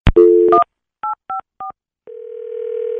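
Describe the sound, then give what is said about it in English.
A phone number being dialed to call someone's dad: a click, then touch-tone key beeps, three short evenly spaced ones, followed by a steady, unbroken line tone that holds to the end. No one speaks. “All right, so we're going to listen in as you call your dad.”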